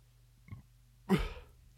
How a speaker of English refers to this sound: I just burped. I know that.